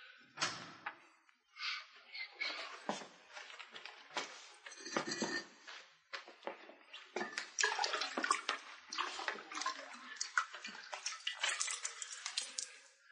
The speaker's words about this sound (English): Holmes rubbed the sponge vigorously across the beggar's face, and it began to peel away.